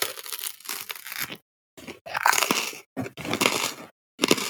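Loud, crunchy chewing of crisp pizza crust in several bursts of crackling bites, separated by short silent pauses, with no talking.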